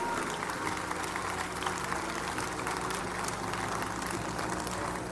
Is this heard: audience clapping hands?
yes